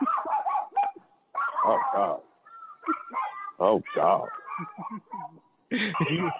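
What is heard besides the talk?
dog barking and whimpering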